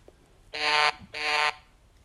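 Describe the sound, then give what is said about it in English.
A telephone ringing tone on an outgoing call placed by the BTS shout out show: two quick, bright, buzzy rings in a double-pulse pattern, each lasting under half a second, with a short gap between them and no talking. “It's ringing.”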